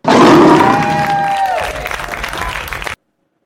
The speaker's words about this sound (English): Lion.